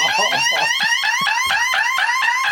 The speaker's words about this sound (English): A what? An alarm? An alarm? Did somebody say an alarm?